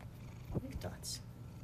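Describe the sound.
A cat purrs in a steady, low rumble that runs the whole time, with a couple of brief voiced sounds and a short hissy burst near the middle.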